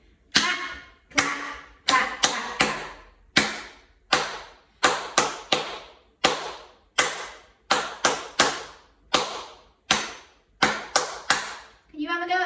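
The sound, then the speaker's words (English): Hands clap out a simple repeating beat for listeners to copy in a clapping game, sharp crisp claps falling in short rhythmic groups with brief pauses between, steady and fairly loud for about twelve seconds. “Nice and simple, just clapping.”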